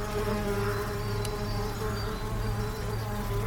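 A bumblebee buzzes steadily, its deep droning hum holding constant throughout with a rich stack of harmonics and no voices.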